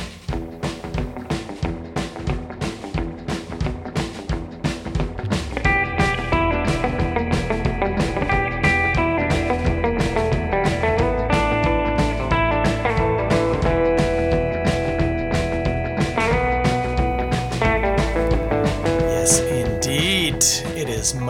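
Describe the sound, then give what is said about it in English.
An upbeat surf rock instrumental plays loud, a steady driving drumbeat under bright melodic lines that swell fuller after the first few seconds, with no voices. “Let's listen to some surf rock.”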